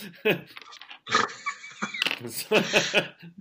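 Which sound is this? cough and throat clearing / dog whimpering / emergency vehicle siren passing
dog whimpering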